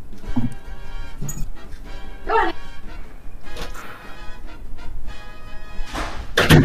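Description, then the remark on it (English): A door blown open by the wind bangs with a couple of loud knocking thuds, the sharpest hit coming near the end, over a steady tonal hum in the background. “Wind's blowing my door open.”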